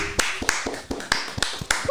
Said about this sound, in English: Yeah, we do got some good news. We do. We got control of the Senate. We could clap it up for that.